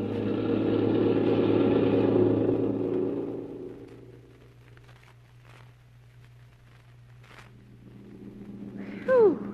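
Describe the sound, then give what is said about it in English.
A car engine roars loudly and then fades as the vehicle pulls away, leaving a steady low hum, followed by a brief rising whine near the end. “How about driving a little faster?”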